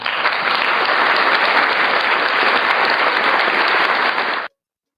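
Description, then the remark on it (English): Loud, dense applause from a crowd, steady and sustained for about four and a half seconds before cutting off abruptly into silence, given for the Boston and Dallas teams winning game seven. “And let's give it applause for those two teams, Boston winning game seven and Dallas winning game seven.”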